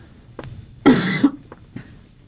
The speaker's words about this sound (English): I'm sorry, I've inhaled something this morning. I apologize. He'll catch on in a minute that he needs to turn off my microphone when I go to cough.